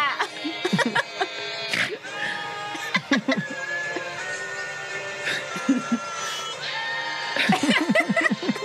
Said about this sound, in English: if you have not seen the Game of Goats version of that song, it is the goat is like, ah!